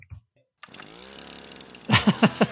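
A string trimmer's small engine buzzes steadily for just over a second, its droning whine fading under a voice that begins talking near the end.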